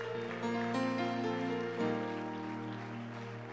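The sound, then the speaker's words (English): An audience claps their hands to the Lord in praise, a steady, dense wash of hand claps over sustained, droning keyboard chords. No one speaks. “Come on, can you clap your hands to the Lord right now?”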